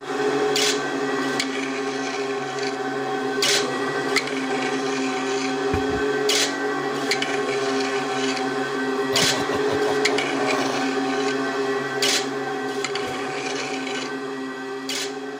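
Scrap-metal percussion music, with sharp metallic strikes at irregular intervals over a dense, steady rasping and ringing drone. Loud and continuous, with no voices.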